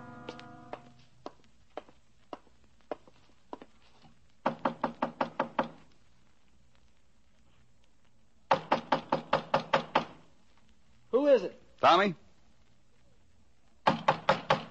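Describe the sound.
Police knocking on a door, starting as slow, spaced single raps and building into loud, rapid bursts of pounding, with a short call from a voice between the volleys.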